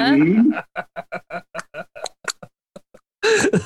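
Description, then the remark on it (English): A person imitates a horse with a quick, steady run of tongue clicks like trotting hooves, a dozen or so in a row, with brief vocal bursts just before and after. “He made the horse noises.”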